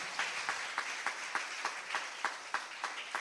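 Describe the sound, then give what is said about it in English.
An audience at a church service claps together in a steady, even rhythm, sharp hand claps landing about three times a second over a continuous wash of crowd noise. “Why are you not clapping?”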